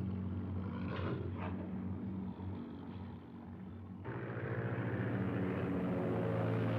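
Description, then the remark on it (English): A steady airplane engine drone from a film soundtrack hums throughout with a rich, rumbling tone, growing fuller and louder partway through. No voices are heard. “That's great with the plane.”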